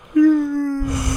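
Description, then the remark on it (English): A single drawn-out yawn, starting with a sudden voiced, steady moan-like tone that trails into a breathy exhale, fairly loud, with no talking. “And now I'm going to yawn. I can feel it coming.”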